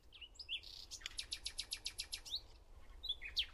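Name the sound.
nightingale singing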